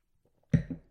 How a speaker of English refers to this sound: I'm going to take a sip. Here we go. Okay.